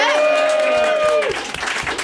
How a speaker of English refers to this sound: But let's have another round of applause for Faye Roberts.